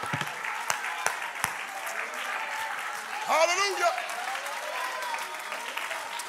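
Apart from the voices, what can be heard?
audience clapping hands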